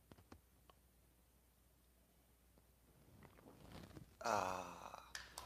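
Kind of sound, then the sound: food or drink, sipping coffee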